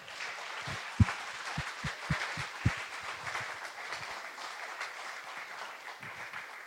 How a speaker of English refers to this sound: Okay, so let's go ahead and applaud now.